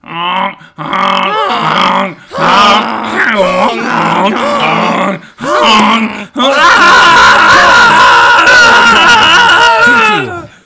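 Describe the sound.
Five voices honk loudly in imitation of geese, first in choppy bursts with short pauses, then merging into a continuous, overlapping chorus of harsh, nasal honks and groans.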